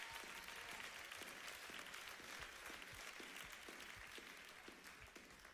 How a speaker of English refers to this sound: Remember, you clapped when I said that.